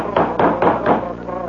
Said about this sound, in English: Someone says, I hear the door. Someone's at the door. Of course, everybody's heard it.